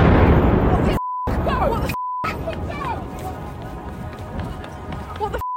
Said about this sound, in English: So that's Times Square. With everything peaceful yesterday until this sudden explosion that could be heard for blocks and blocks, sending hundreds of people running away in a total panic.